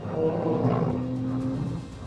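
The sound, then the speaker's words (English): A huge behemoth creature lets out a deep, sustained roar, a low, rumbling, tonal growl that stays loud for about two seconds, with no talking over it. “He tumbled into the creature's stomach as it let out a massive roar.”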